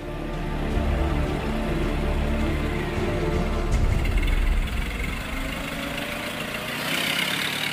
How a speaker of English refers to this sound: … clearly remembers the cars arriving from Downing Street that evening. It was after 8 p.m. when I heard the cars pulling up at Hans Place.